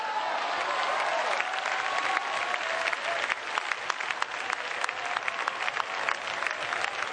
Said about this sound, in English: But boy, we just, clapping's our thing.